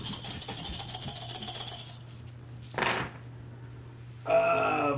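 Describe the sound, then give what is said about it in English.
Ten dice are rolled, rattling and clattering in a dense burst for about two seconds, followed by a single short clack and then a brief bright chime, with no one talking. “Roll 10 dice.”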